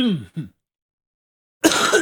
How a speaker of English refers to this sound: I'll have the cough through the end of Hunter Talk, I'm sure.